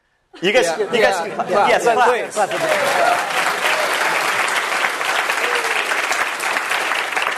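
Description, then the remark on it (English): At a Stanford Technology Ventures Program lecture, a voice speaks briefly over the start, then the audience breaks into loud, sustained applause for speaker Stewart Butterfield, co-founder and CEO of Slack, a dense, steady wash of many hands clapping that carries on without fading until the end. “Clap again. We got. Let's just keep it going.”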